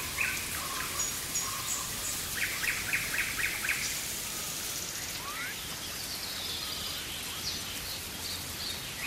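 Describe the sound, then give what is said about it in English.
Steady rain hisses in a dense, even wash in a rainforest while birds call over it: quick repeated chirps, rising whistled notes and scattered tweets, with no voices. “It was rain. It was a rainforest.”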